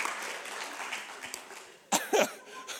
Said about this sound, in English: The whole congregation claps. It's amazing. It takes one to sort of lead out. And then half a dozen other people say, oh, he's clapping. I'm going to clap too.